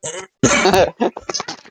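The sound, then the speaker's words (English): A person coughs: a short cough, then a loud, harsh, drawn-out hack followed by a quick string of smaller, choppy coughs and throat-clearing sounds. “Sorry about my cough, man.”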